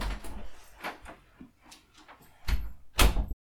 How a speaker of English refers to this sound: So I'm gonna quickly open the door so Lily can go explore.